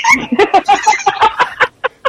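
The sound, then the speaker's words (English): A woman's imitation of a Canada goose honking: a rapid run of about a dozen harsh, nasal honks that falls briefly quiet before two final calls. “She's giving you the Canadian goose.”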